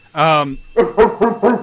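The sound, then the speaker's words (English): A person vocally imitates a dog: one drawn-out, growly howl followed by four quick, punchy barks in a steady rhythm, loud, with no other sounds around it. “I bark at him.”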